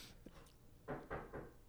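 Three dull, evenly spaced knocks on a door in quick succession, fairly soft and low-pitched, with no one talking over them.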